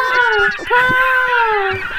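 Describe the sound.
A person's voice imitates a gull's cry, two long, nasal, wavering calls in quick succession, loud, with no other speech.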